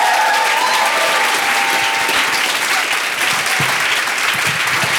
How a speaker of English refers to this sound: Let's give him a massive cheer now. Why don't we?